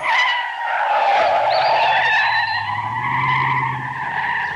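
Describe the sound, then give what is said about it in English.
A car driven fast out in the middle of nowhere skids, its tires screeching in a long, loud, wavering squeal, while a low engine roar builds underneath and keeps revving throughout. “Who is driving like a madman out here in the middle of nowhere?”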